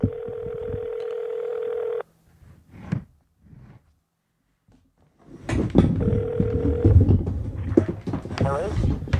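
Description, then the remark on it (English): A steady electronic tone plays for about two seconds, followed by brief clicks and a pause, then a louder burst of phone tones and noisy activity with a voice speaking underneath. “So let's see if we can get old … on the phone. Let's give him a call.”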